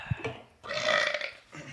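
A single drawn-out, loud burp, rumbling low before swelling into a raspy, throaty middle and trailing off, with no one talking over it.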